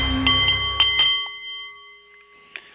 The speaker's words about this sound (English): The Nepalese meditation bowl is chiming, and that means it is time for The Art of the CEO